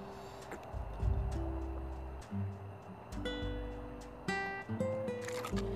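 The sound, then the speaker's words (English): Moist sipping and gulping as someone drinks purified drinking water, with squishy swallows and slurps spread over a few seconds, plus a faint steady hum in the background. “Let me get a sip of this water.”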